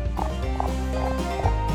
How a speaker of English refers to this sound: And the sound of horses fill the village as the hooves ride inside of the wall. And the sound has drawn out quite a few of the people.